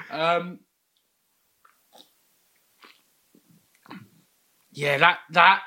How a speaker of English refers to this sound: I don't know if it's because I've got chewing gum